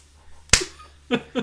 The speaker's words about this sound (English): Hey, should I just give you a slap now